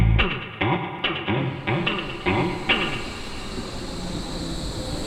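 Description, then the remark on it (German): An S-Bahn train, line S41 to Hermannstraße on the Berlin Ringbahn, pulls into track 1 of a station, a series of sharp clanks and rattles over the first few seconds settling into a steady rumbling hiss of the train at the platform. “Eingefahrener Zug auf Gleis 1, S41 nach Hermannstraße.”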